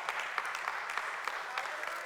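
A crowd claps steadily as a hand clap of praise to God, many overlapping hand claps forming a dense, bright wash of applause with small sharp peaks, sustained at an even level throughout.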